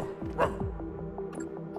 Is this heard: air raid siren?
no